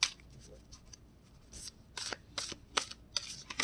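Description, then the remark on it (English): Crisp, papery riffling of a Wild Unknown tarot deck being shuffled to pull cards, in short repeated bursts of flicking and snapping with brief pauses between, no voices. “So I'm going to shuffle this and see what I get.”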